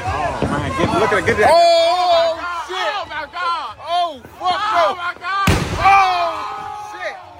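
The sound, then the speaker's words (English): A firework mortar goes off inside a car with a rapid burst of loud crackling pops, then another sharp blast a few seconds later, while people scream and shout throughout. “Lights that looked like a mortar. He puts a firework into the car.”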